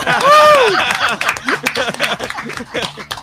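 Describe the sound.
Audience applause: a short rising-and-falling whoop at the start, then loose, irregular clapping with sharp claps scattered over a few seconds, mixed with murmuring voices.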